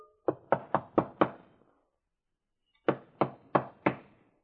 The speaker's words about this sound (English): Yes, who is knocking, please?